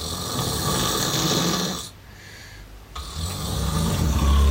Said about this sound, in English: You might remember in the last episode that you played out a clip of me snoring. How could I forget? It's probably still reverberating around, but if you missed that, here it is.